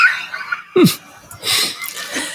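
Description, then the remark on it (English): Several short bursts of shrill squealing and screaming, one cry sliding downward in pitch, arriving in quick succession with breathy, laugh-like noises between them and no talking. “There, as you can tell now by the screams in the background.”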